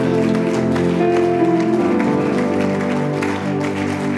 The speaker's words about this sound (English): That clap is not good.